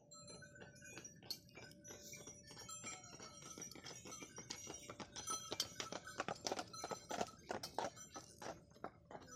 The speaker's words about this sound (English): We picked the perfect evening to go. It was warm and pleasant, and we were greeted by the sparkling Christmas lights and the jingle of bells on a harness.